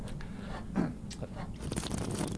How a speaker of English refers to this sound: That's like Gary Vaynerchuk slurp there